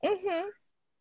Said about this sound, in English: I don't know why I'm yawning so much.